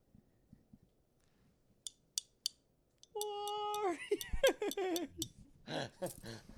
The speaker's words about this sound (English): Sorry, I need to do one more. I had to clink that bottle.